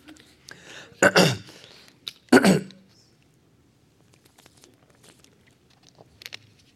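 A man coughs and clears his throat in two harsh, loud bursts, followed by a few seconds of quiet background with faint small movements.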